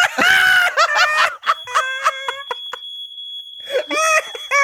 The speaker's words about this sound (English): The fucking fire alarm's going off.